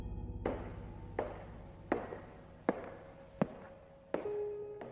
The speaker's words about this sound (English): We then heard footsteps going down the hall.